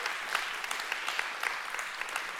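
A church audience claps steadily to give the Lord a hand clap after a sermon, many hands merging into a dense, bright patter of overlapping claps with small sharp peaks, sustained at an even level throughout with no voices over it.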